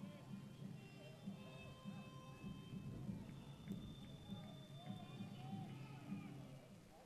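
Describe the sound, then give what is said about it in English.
A light, misting rain at a ballgame in San Diego makes a steady, soft hiss throughout, with a faint murmur of crowd voices underneath as fans leave their seats, and no sharp drops or breaks. “It's not raining hard, but a misting rain as everyone has gotten up and moved out of their seats, put up a couple of umbrellas, got the parkas out now.”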